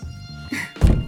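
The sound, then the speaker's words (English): Dull, heavy knocks on a door at the end of a hall with a sign reading concierge: a couple of loud, low thuds land near the end after a quieter, murmuring stretch, with no voices. “I have not seen the sign, but I am knocking.”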